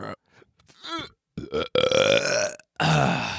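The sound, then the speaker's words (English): A loud, drawn-out belch rumbles, broken into a few gassy bursts with brief pauses between them before one final croaking push. “Just take a big ass belch. Big old belch.”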